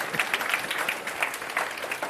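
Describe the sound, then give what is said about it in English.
An audience at a second service applauds steadily, a dense wash of many hands clapping at an even, moderate level with no voices standing out, continuing throughout. “They're actually clapping for me.”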